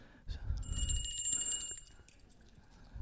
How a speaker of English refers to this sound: Is that your bell? And here is her little bell. Remember what she said? Daddy, every time the bell rings, an angel gets its wings.